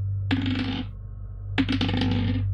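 Dice rattle and clatter across a hard surface in two separate rolls for a constitution saving throw with advantage, each a quick burst of bright, skittering clicks that settle after about half a second; the rolls come up 9 and 4; no one speaks.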